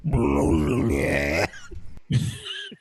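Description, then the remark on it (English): A long, loud, croaking belch rumbles for over a second, followed after a short pause by a second, briefer burp, with no talking. “I just burp belched like corn chunks into your face. We communicated just in belching.”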